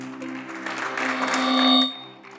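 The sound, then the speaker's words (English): A church audience claps as an offering to the Lord in a dense, steady patter of applause over a sustained low organ-like tone, swelling slightly before the clapping fades out near the end. “Somebody give the Lord a good clap offering.”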